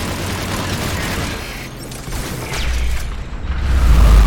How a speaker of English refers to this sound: So periodically, there's a giant deadly wave that goes past. That whooshing sound?